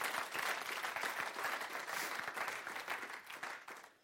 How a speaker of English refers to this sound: I love the fact that we had 58 people say that they wanted to follow Jesus. I thought we'd get a big round of applause for that. 58 people.